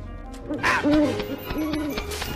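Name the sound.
owl hooting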